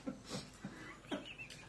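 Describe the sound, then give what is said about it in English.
A dog shifts and moves, making a few soft, irregular rustling and scuffling bursts with faint breathy sounds between them. No one speaks. “The dog just wedged a butt plug between my thighs.”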